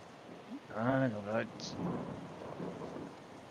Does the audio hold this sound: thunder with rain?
yes